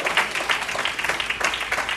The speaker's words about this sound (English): And even when you clap and act like you like it a little bit, it just, you know, you just make an old person say, you know what you do.